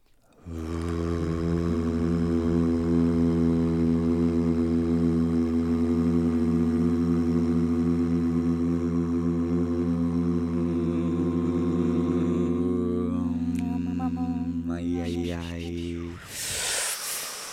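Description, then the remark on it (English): Several voices hum and buzz together to start a show, in a long, steady low drone, holding a rich harmonic tone for about fifteen seconds before breaking off into a brief burst of breathy noise. “Let's just make a noise together. Ready? We're gonna just buzz it out to start the show.”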